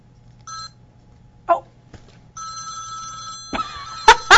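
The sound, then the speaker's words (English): A telephone rings with a bright, trilling electronic tone, coming in short bursts, the longest about a second, followed by a few sharp knocks and clatters at the end. No one speaks. “Wizards and witches, wherever you dwell, give us a hint by ringing a bell.”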